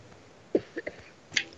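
Someone takes a sip of coffee: a short, quiet gulp followed by a couple of soft mouth clicks, then a brief sharper, higher-pitched sound. No one speaks.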